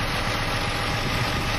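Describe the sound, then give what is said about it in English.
Steady car engine rumble with a broad wash of road noise while driving a car in a European capital city. The sound holds an even, continuous level throughout, with no voices. “But I'm just giving you the first-hand experience of what it really is like to drive a car in a European capital city.”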